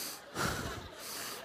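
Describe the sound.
A person imitates breathing in and out through a jock strap held to the face like an oxygen mask: a loud, rough, hissing inhale followed by a steadier airy exhale, with no words spoken.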